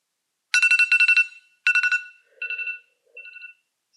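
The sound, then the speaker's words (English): A timer alarm marking the end of a one-minute timer rings out in quick electronic bursts: a rapid pulsing chirp, then a second shorter burst, followed by two fainter, lower tones before falling silent. No one speaks. “Okay, I'm going to set a timer, and you have 1 minute to explain your opinion to us. And when the timer ends, it'll be this.”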